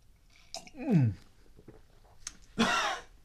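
Someone takes a short, noisy slurping sip of tea, shortly after a brief descending vocal murmur, with quiet pauses around both.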